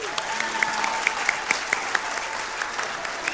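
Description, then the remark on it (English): Wedding guests applaud steadily as a newly married couple is presented as Mr. and Mrs., a dense wash of many overlapping hand claps with a few sharper individual claps standing out, holding at an even, moderately loud level throughout. “Clap again.”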